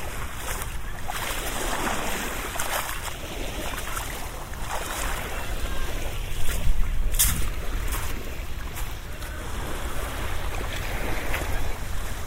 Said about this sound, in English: I just want to stand here and listen to the water, because it's just so, yeah, it's just so peaceful.